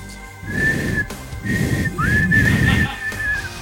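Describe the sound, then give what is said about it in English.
A person whistles shrilly in three sustained bursts, the last starting with an upward swoop and holding steady, fairly loud over a rough, rumbling background noise. “Wow, it's raining. Whistles.”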